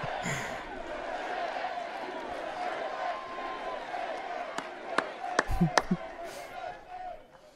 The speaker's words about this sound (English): I saw he was trying to take a drink of water there. And the... The clapping went down, so he couldn't take the drink of water.